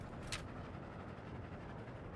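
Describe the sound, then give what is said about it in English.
A train rolls steadily along the track, a continuous low rumble with a brief sharp hiss near the start, fairly quiet and even throughout with no voices. “As the train keeps moving along the track, Elmo sees light sparkling on a long, winding river.”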